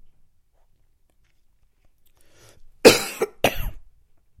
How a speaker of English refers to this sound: Can't stop coughing.